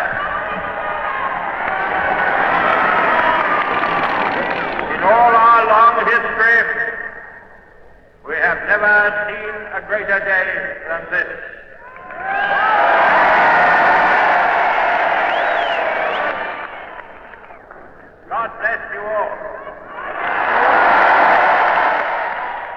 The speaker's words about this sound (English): And as Winston Churchill told the milling, joyous crowd in Whitehall that day, "This is your victory. Victory of the cause of freedom is every day."